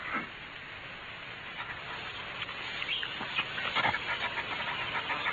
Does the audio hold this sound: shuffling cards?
no